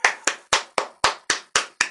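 crowd, small round of applause

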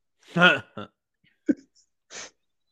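human body sound, burp

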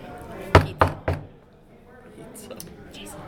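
household object, knocking on a door

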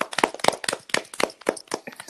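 human body sound, hand clapping

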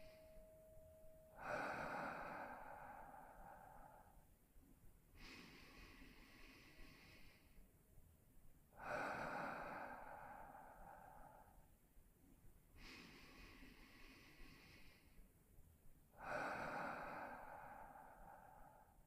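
human body sound, slow deep breathing exercise

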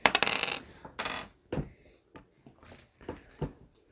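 household object, dice rolling on table

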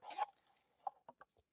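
food or drink, sipping coffee

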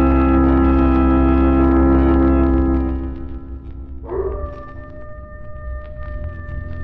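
animal, coyote howling

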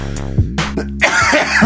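human body sound, coughing and throat clearing

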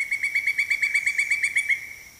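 bird, pileated woodpecker call

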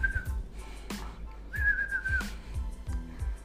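human body sound, person whistling

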